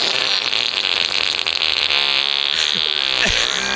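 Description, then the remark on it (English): A long, loud, raspy fart buzzes steadily for several seconds, its pitch wavering and sputtering toward the end, with no talking over it. “Hey, and that butt toot was brought to you by Subway Sandwiches.”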